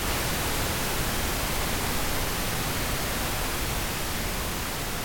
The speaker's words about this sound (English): Her brain waves would have sounded like this.